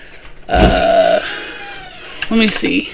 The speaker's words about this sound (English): There goes my cat opening my door again. I knew it.